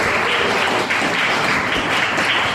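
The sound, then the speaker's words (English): Steady, dense applause from a sizable crowd at a Rutgers event, thanking the Union of Rutgers Administrators, many hands clapping at once in a continuous wash of sound, fairly loud, with no talking. “So please let them hang around the applause.”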